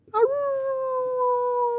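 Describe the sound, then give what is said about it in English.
A person imitates a hound dog's howl with one long, steady, mournful tone that starts with a brief rising yelp and then holds fairly loud for nearly two seconds. “It's more like a wolf, I think. It's not bird wolf. Hound dog, really, is what you're doing.”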